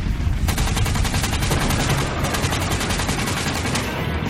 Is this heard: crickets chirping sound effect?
no